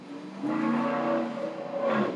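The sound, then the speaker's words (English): A loud truck engine revs outside, its deep harmonic roar rising and swelling twice over a couple of seconds, steady and dominating the scene. “the other truck's jacked up that high. Okay, why do you need to have it that loud?”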